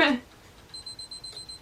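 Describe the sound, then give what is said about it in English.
A camera's 10-second self-timer emits a thin, high-pitched electronic tone that holds steadily for about a second, following a brief burst of voice at the very start. “Oh, why did I do that? It's on the 10-second timer.”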